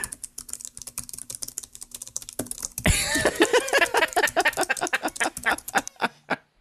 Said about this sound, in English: Stupid mechanical keyboards. I've never understood the need for a mechanical keyboard. Like, it's just so your friends hate you. I guess. It's to make it look like you're doing work.